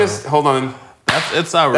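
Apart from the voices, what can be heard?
hands slapping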